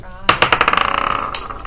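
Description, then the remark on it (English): New dice clatter into a bowl: a sharp first strike, then a run of hard clicks that speeds up and blurs into a quick rattle before settling. “We're all using the new dice. I tried the new dice and they weren't new dicing.”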